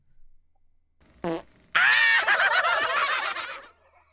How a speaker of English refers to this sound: I got to get this fart. Whose fart is it anyway?